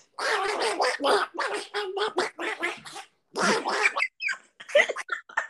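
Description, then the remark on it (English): A voice imitates Donald Duck throwing a temper tantrum, sputtering rapid, garbled quacking bursts loudly, with one brief pause midway before the squawking fit resumes. “I'm just gonna go with Donald Duck's temper tantrum.”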